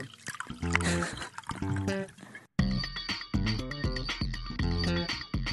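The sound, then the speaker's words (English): Sauvignon Blanc white wine pours into a glass in a steady trickle, its gurgling tone shifting in pitch as the glass fills, with a brief pause before the pouring resumes. “Drinking Sauvignon Blanc while chatting with the folk.”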